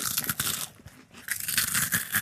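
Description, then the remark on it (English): Dry, brittle crunching as a piece of dehydrated peach is bitten and chewed, a rapid series of crackly snaps that fade briefly in the middle and then resume, with no talking. “So if you want a nice ripe peach in here, you can have one. But it'll be dehydrated.”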